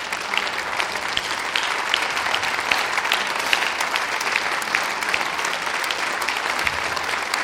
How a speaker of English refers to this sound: Come on, let's give the Lord a hand clap of praise. In fact, will you stand with me and let's give the Lord praise? Come on, let's give Him a real round of applause and praise today.